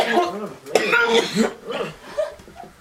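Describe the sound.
A person lets out a few harsh, voiced coughs, with raspy throaty sounds between them, over a span of a few seconds.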